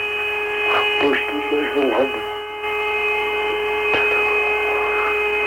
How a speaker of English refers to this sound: That music even sounds outer spacey, doesn't it? You hear that? That whistling sound? Yeah. Woo! That'd be me. Yeah, it sounds like, outer space type music.